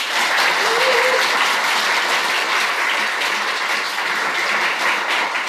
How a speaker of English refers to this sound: So, audience, you guys have been super great in terms of everything that we've been doing. Give yourself a round of applause to start with.